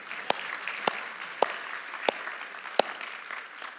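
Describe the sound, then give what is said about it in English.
Steady crowd applause, a dense wash of many hands clapping together, with a few sharper, louder claps popping out at irregular moments. No voices stand out over it. “I would like to give you a round of applause.”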